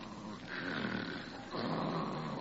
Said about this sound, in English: Holy smoke, she snores. Oh, no, no, she never told me about this. With a whistle yet.